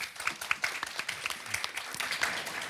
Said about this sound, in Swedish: Tack så mycket. En applåd.